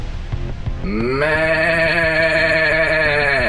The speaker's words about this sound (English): I have here a prepared recording from the Division of Goats.